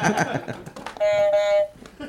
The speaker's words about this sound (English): But anyway, let's play the Leonard Maltin game. Oh! Give me these fucking buzzers,